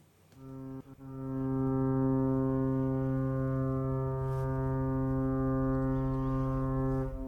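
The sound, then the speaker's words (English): A long, steady horn, hooter or siren blast signalling that the Brexit countdown clock is being prepared, with a deep, rich harmonic tone, swells up after a brief start and holds loud and unwavering for about six seconds, with no voices present. “Now, that's definitely the horn, that's definitely the hooter, that's definitely the siren that tells us that the countdown clock is being prepared, but is it going any quicker?”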